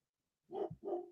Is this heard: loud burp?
no